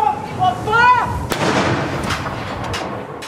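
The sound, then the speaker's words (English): Cannon fire from one of the 96-round gun salutes held across the UK, from Stonehenge to Edinburgh Castle, marking each year of the Queen's life: a sharp, loud boom followed by a rumbling wash, with fainter reports after it. A brief raised voice is heard just before the first shot. “As 96 round gun salutes were held from Stonehenge to Edinburgh Castle, marking every year of the Queen's life.”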